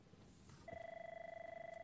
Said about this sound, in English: I know why the phone's ringing.